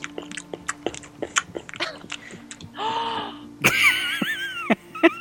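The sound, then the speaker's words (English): Crunchy munching on a pancake with a quick run of sharp chewing clicks, followed by a drawn-out moaning tone and some warbling, whistly sounds over a low steady hum. “Stop munching so close to me”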